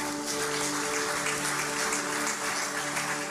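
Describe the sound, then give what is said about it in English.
A C3 Church audience applauds steadily for a few seconds to welcome speaker Dave Ferguson, a dense wash of clapping at even volume, with a faint sustained tonal hum running beneath it and no voices. “Let's give him a big round of applause as we invite Dave Ferguson to speak today.”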